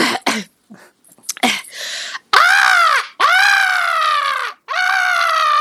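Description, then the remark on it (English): A person imitates a seagull: a few breathy, throaty warm-up sounds, then three loud, squealing cries with a rising-falling pitch, each held about a second with short gaps between. “Like, I do a really good, like a great seagull noise.”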